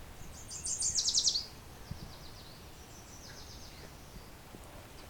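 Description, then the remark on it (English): A couple of yellow warblers sing a quick, bright run of high sweet notes, loud, followed by fainter song phrases over a soft steady outdoor hiss, in a wet, humid, shaded spot. “Couple fairly loud yellow warblers here.”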